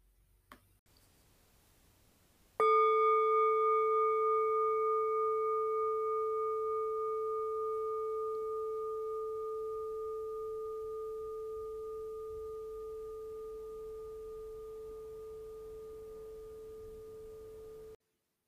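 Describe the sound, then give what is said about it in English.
A meditation bell is struck once to open a roughly 15-minute guided loving-kindness meditation and rings on with a clear, steady tone and shimmering overtones, fading very slowly over about fifteen seconds with no talking. “So if that's useful to you right now, or you suspect it might be useful to you right now, it'll take about 15 minutes, and we'll start in with the bell.”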